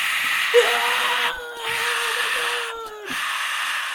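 A steady roar of festival crowd noise, with one long, wavering wail held above the din for about two and a half seconds, as the cheering carries on throughout.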